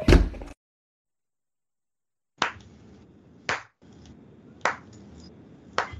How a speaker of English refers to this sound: Damn it, I forgot how gratifying it is to slam the door in the face of someone who is a Karen. It's been a long time since I've done that.